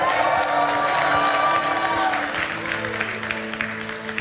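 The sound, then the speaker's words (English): A church audience cheers and applauds loudly and steadily in a practice run for celebrating baptisms, a dense wash of clapping with whoops and excited voices rising through it, easing slightly toward the end. “They are cheering and they are excited because of what has been done.”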